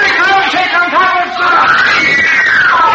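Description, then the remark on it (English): A dense crowd of kids screaming and shrieking together around a stage door, loud and continuous, with overlapping high-pitched yells that swell and rise, sounding packed in. “If he can get through those kids around the door.”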